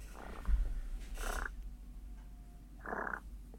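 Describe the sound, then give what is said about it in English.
Three short, rolling turkey purrs made on a four-reed Hardys mouth diaphragm call, fairly loud, each a rough, fluttering burst separated by brief pauses, with no talking. “It's the four reed, so it's probably not the best. No, I wouldn't even think about purring on it.”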